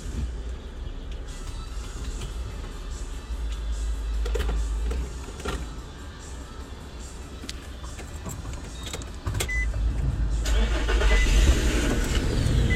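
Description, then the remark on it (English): A car engine is cranked with the ignition, the key held a second or two too long, and catches, its low rumble rising and growing louder near the end, with a few mechanical clicks along the way and no voices. “You held it there for like another second or two.”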